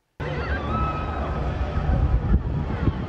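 Screaming and shouting voices of people in a burning five-story building at night, shouting "fire", mix into a dense, unbroken roar of chaotic noise, with low rumbling bursts underneath, lasting a few seconds at a steady, loud level.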